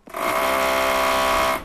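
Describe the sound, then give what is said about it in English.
A large motorized drill boring over a mile deep into Antarctic ice to collect ice samples whirs steadily and loudly, a sustained mechanical drone with a tonal hum that starts abruptly and runs for about a second and a half before cutting off. “Some samples even require a humongous drill that bores over a mile deep into the Antarctic.”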